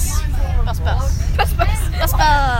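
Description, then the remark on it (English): Inside a moving, rattling bus: a steady low engine rumble fills the background while several high, lively children's voices and other people chatter and overlap throughout. “Just a bus. I should probably tell by the rattling and the children.”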